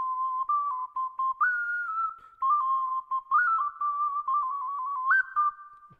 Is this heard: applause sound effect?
no